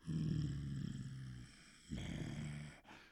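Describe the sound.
As a tribute to a hip hop artist who had just died, a man imitates his rough hip hop growl with his voice: two low, raspy, sustained growls, the first nearly two seconds long and the second shorter, loud and without words.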